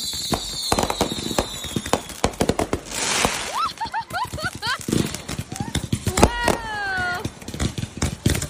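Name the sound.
fireworks finale bursting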